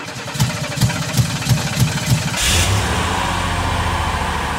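A car engine chugs in regular, rhythmic pulses for a couple of seconds, then settles into a steady, loud, low rumble as it keeps running. No voices.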